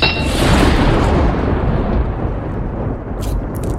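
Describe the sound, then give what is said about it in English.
A knight slams a blood-stained sword into stonework with a heavy, booming crash, followed by a loud rumbling decay that fades slowly over several seconds, with a few faint crackles near the end. No voices. “And with that, the knight slammed the sword into the stonework.”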